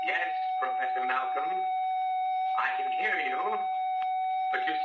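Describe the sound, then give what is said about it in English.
A bell rings in one unbroken, steady tone for the whole stretch, while muffled voices come and go over it in short bursts. “Bell. Science. I thought somebody was at the front desk.”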